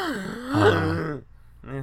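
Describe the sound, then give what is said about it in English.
A loud, dramatic gasp, voiced and drawn out with a rising-falling pitch, followed after a brief pause by a shorter second breathy vocal sound. “Dramatic that was a good gasping. Noise. It took a lot of air.”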